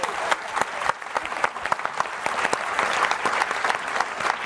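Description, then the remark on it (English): An audience applauds the teachers standing up among them, a steady, dense patter of many hands clapping at once, with sharper individual claps standing out, sustained at a fairly loud, even level throughout. “Could you give them a clap, all of you, please?”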